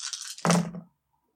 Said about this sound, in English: Add two dice to your roll test. Damn. Alright, good. Hold on. That's 14 dice to roll.